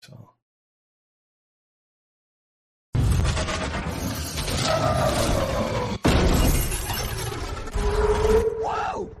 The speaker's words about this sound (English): Okay, so what has just happened, for those who are actually listening to the audio version of the podcast, is a big truck just scraped the bright green Alfa Romeo. Okay, now they've hit a black car.